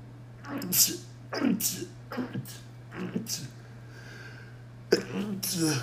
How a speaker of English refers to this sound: Good Lord. I ain't really sneezed on this podcast before, but yeah.